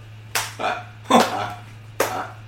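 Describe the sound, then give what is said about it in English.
Sharp, loud smacking hits like hard slaps, three cracks spaced about a second apart, each with a brief fading tail over a steady low hum. “That was a hard slap, mister.”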